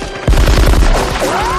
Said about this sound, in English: And when Carl opens fire, again, all the details are so good. His gun sounds completely different. Yeah. It's like a cannon he's firing at him.